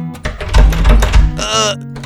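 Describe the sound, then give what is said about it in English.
Several heavy, dull thuds as the locked door of Beach Bear Lodge is shoved and rattles without giving way, followed by a short strained vocal grunt. “Yeah, the door is broke. It won't open, dude.”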